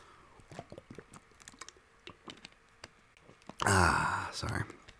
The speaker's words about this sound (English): Take a sip of water.